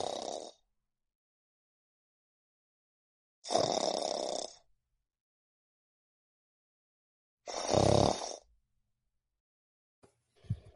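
Loud, rasping snores come at a steady rhythm, three drawn-out rumbles separated by silent pauses of a few seconds, with a short fourth breath starting at the very end.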